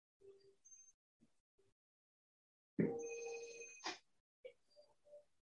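A telephone rings with one loud, steady electronic tone lasting about a second, surrounded by short, quieter chirps and beeps before and after it.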